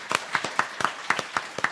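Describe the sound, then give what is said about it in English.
Quick, steady clapping, about ten sharp claps in under two seconds at an even rhythm, moderately loud with no voices, like a brief round of applause from a small group: an audience at a live show applauding Escape Bar. “Yeah, so a big round of applause for Escape Bar.”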